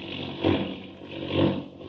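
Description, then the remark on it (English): A roaring airplane engine drones steadily in the dark and snow, swelling twice into loud, straining surges as the plane takes a sudden plunge and dives into a tailspin. No voices are heard. “The plane took a sudden, sickening plunge, and Clark Kent vanished.”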